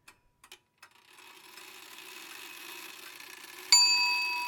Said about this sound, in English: The loud clang of the clock striking 3 chimes awakens Bob.